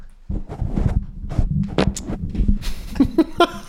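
A quick flurry of sharp hand claps made to sync up audio timing, loud and irregular, the snaps landing in an uneven rhythm over a few seconds, with a faint voice-like tone near the end.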